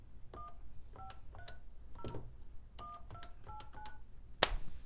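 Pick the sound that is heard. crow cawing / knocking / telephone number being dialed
telephone number being dialed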